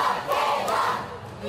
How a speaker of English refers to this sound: While Michaela Skinner's supporters were cheering in Arizona, back from Tokyo after representing our country with pride.